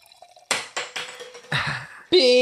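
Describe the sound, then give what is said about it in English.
Carbonated canned wine pours and splashes into glasses in several bubbly bursts, ending with a bright clink or ringing tone. “So, it's like little mini wines, you guys. Like, yeah, that's so cute. Okay, so we're going to pour these in here.”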